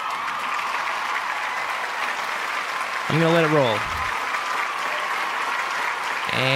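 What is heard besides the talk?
clapping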